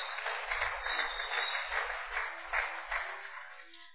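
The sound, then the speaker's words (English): An audience applauds steadily for several seconds, a dense crowd of clapping hands at moderate volume with no voices over it. “If you clap, that's a good place to clap.”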